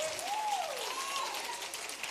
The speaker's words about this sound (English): Y'all don't sound like you believe it. That sounds like you're giving somebody some nice applause after they said a speech.